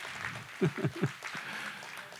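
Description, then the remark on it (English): A handful of scattered claps, three or four quick sharp hits in a short burst from about two people, then only a low background hiss. “And God began, amen, you can clap. There's like two of you, okay.”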